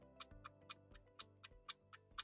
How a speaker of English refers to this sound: The clock really is ticking.